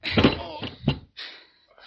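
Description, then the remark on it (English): A heavy punch lands in a fight amid a couple of strained grunts, followed by the rustling, scuffing thud of a man being knocked down and collapsing onto the floor. “Oh, then you go on the floor with it.”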